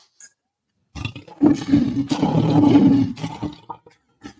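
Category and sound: animal, lion roar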